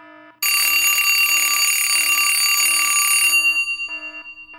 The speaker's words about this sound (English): What was that? Just my alarm. It's time for lunch.